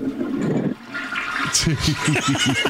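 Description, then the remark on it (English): A toilet flushes with a loud rush of water. Partway through, a voice starts talking over the ongoing swirl. “And now I still don't like the toilet flushing.”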